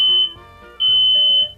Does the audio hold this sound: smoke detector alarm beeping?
yes